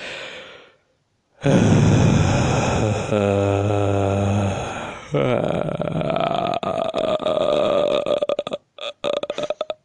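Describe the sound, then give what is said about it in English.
After a second of silence, someone breathes heavily into the microphone: a loud, long, rough exhale with a deep groaning, burp-like voiced stretch, trailing into a crackly, sputtering breath that runs out. “So, but you said you would appreciate someone breathing into the microphone.”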